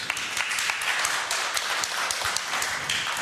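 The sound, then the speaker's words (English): A crowd claps steadily in a dense, even wash of applause, many hands blending into a continuous crackle with scattered sharper claps standing out. “And you can give a hand”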